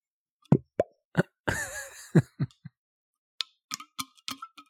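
A bottle of Quality House whiskey, 80 proof, from Heaven Hill, is opened: the cork pops several times with sharp, hollow plops, broken by a brief squeaky twisting scrape, then a run of lighter clinking taps as it is poured. No one speaks.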